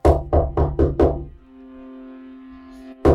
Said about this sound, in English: But before he can get out a good cry, there's a rapping at the window.